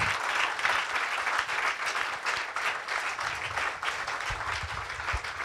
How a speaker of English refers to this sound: Est-ce qu'on peut applaudir la présence de Dieu ce matin? Est-ce qu'on peut applaudir plus? Oh, can we clap louder? I'm sorry. Louder than that, louder than that.